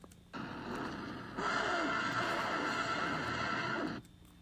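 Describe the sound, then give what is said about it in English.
The whale in the film Pinocchio roars monstrously while trying to eat Pinocchio and his father: a harsh, sustained bellowing that bursts in, swells louder partway through, then cuts off abruptly after about three and a half seconds, with no talking. “In this clip, you will hear the whale in the film trying to eat Pinocchio and his dad.”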